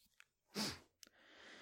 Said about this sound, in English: Sorry, I keep sniffing again. I'm trying to do it away from the mic, but it is what it is.